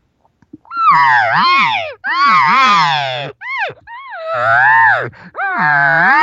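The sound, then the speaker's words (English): A voice imitates an elk cow call to draw a bull elk toward the caller: four or five loud, whiny, nasal mews in a row, each rising then dipping in pitch, separated by brief pauses. “But immediately I'm going to try to call the bull my way. And I'm going to do this with the cow sound.”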